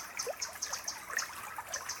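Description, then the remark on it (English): Gentle water of a winding brook trickling and burbling in high summer, with a steady liquid babble and small bright splashes and drips scattered throughout, no voices present. “River song in high summer.”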